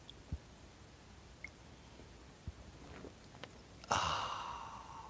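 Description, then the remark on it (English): A quiet sip of coffee: a few faint mouth clicks, then a sudden airy slurp that trails off into a satisfied breathy exhale. No one speaks. “It's called the simultaneous sip, and watch it improve your life now.”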